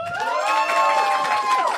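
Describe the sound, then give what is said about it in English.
An audience cheers loudly for a couple of seconds, clapping to vote that becoming a goo or dying in Evangelion is far worse, with sustained high-pitched whoops and shouts rising together over a wash of crowd noise and faint clapping mixed underneath. “So clap if you think that it's far worse to become a goo or die in Evangelion.”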